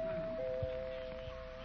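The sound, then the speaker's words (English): Mrs. Pettibone's doorbell is rung nervously, with one steady, sustained mid-pitched tone that holds for under two seconds, shifting pitch slightly early on, with a couple of soft thumps underneath and no one speaking. “Pettibone's doorbell in a last-minute attempt to avert a civil war in the hat shop this afternoon.”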